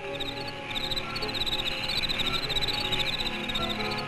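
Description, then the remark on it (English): A dense, steady chorus of buzzing insects, including mosquitoes, fills a damp, humid jungle, with high shrill trilling layered over a low background hum, continuous with no voices. “The air is damp and alive with mosquitoes.”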